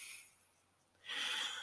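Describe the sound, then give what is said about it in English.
Airy, hissing breath sounds of slow, deep breathing, in for five seconds and out for seven: a short breath fades out, a brief quiet pause follows, then a stronger, longer breath rushes in. No one speaks. “Breathing in and out. 5 seconds in. 7 seconds out.”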